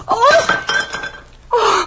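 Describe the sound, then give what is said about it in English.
A dropped platter smashes, a bright crash of breaking crockery with a thin ringing tone lingering for about a second before a second sharp burst of clatter. “Here's the platter and be careful.”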